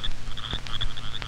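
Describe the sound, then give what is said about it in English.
A little frog croaks in quick, repeated high-pitched chirps, a steady run of short calls over a low background hum. “Or maybe a little bitty frog.”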